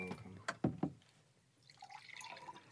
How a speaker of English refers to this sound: Beautiful water being poured